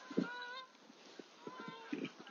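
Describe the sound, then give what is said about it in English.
Geese flying overhead honk repeatedly, a series of nasal calls at uneven intervals, moderately loud, with an outdoor background hiss. “You may hear some geese flying overhead.”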